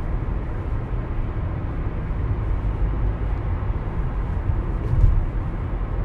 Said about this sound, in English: There's a bus coming across from me.